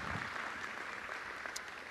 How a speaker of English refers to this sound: I think Jesus Christ deserves a hand clap of praise. Amen. Amen.